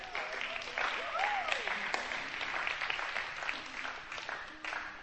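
A church audience claps steadily for about five seconds as two people are called up to share, a dense, even patter of many hands with a few louder individual claps and faint voices and whoops mixed in.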